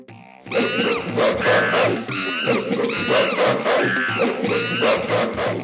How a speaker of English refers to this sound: It is the sound of chimpanzees.